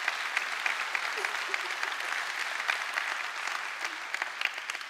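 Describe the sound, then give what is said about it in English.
A crowd applauds steadily for several seconds, a dense wash of many hands clapping at an even level, with scattered sharper claps standing out from the mass. “You can clap for that.”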